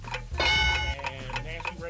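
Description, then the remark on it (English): A 30-second countdown timer for a quiz game ticks steadily, its sharp clicks repeating at an even pace while a tonal hum and some talking overlap briefly. “You got 30 seconds to name three other first ladies not named Barbara Bush. Your clock starts now.”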